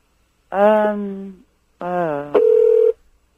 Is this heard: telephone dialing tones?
yes